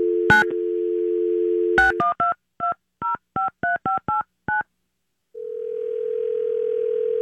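A steady telephone dial tone hums, broken by two sharp clicks, then a quick series of about nine touch-tone beeps as a number is dialed for a call made from a haunted house, followed by a pause and a new steady tone.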